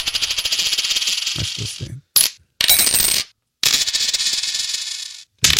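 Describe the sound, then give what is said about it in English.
Coins are tossed into a jar in several loud bursts of dense metallic clinking and jingling, separated by short silent gaps, with no voices. “Throw a couple of coins in the CAT scan.”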